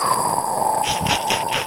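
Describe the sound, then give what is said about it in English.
A voice imitates a man laughing at jokes as a wheezy snicker like the cartoon dog Muttley: about four quick, rhythmic breathy hisses, coming after a brief stretch of steady background hum. “just listening to him laugh at jokes going like...”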